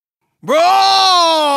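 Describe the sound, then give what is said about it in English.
After a brief silence, a single voice in a sound-off contest lets out a loud, sustained, growling cry that swoops up in pitch and then holds steady, a vocal imitation of a lion's roar. “For this sound off, I want to hear you make your best lion roar.”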